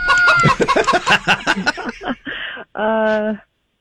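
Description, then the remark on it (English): A voice imitates a rooster, with a quick run of loud clucks that break off into a short, sustained crowing call near the end. “What do you call a rooster?”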